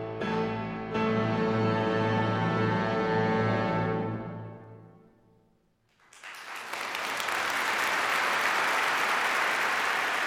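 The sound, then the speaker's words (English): A sustained musical chord rings and fades away, then loud crowd applause for a woman musician's concert performance at the Gewandhaus in Leipzig bursts in and carries on steadily through the last four seconds. “She soaked up the applause, the star of the show, and she played like never before.”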